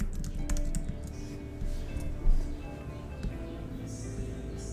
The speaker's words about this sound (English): I do want to point out that your typing was louder than the music.